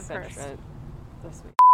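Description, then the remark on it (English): A man speaks briefly, then his voice cuts off and a loud, steady censor bleep tone abruptly takes over for a short moment, masking a swear word. “I'm going to have to go beep on the recording.”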